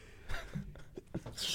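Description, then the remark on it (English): A single sneeze: a short intake of breath, then a sharp, hissy burst of air at the very end, set against low background murmur. “Bless you. You had to take a moment.”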